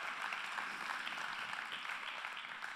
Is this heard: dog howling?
no